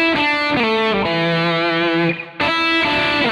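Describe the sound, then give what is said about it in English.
A short distorted electric guitar lick: the third fret of the second string, a hammer-on to the fifth fret, back to the third, while plucking the first string. A handful of sustained, buzzing notes step between pitches, then a brief dip before one last ringing note. “You're going to hit the fifth fret with a hammer-on. Then you're going to go back to that three.”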